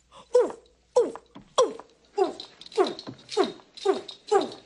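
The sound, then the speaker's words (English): A person imitates an orangutan with eight evenly spaced, hooting grunts, each dropping in pitch, fairly loud in a steady rhythm with brief pauses between. “Make a noise like an orangutan.”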